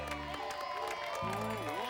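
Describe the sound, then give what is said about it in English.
A crowd cheers and applauds steadily for two seconds for the man who made the day's show possible, a dense wash of clapping mixed with high whoops and excited shouts, including children's voices, staying loud throughout. “Hey, how about a big round of applause for the man who made this all possible today?”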